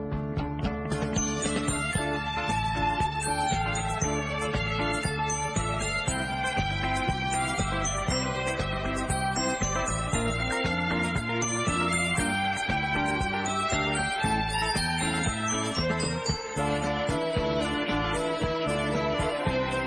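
A Turkish pop song plays steadily for the whole stretch, with full, layered instrumentation, a pulsing rhythmic beat and bright melodic lines, holding an even, loud level throughout.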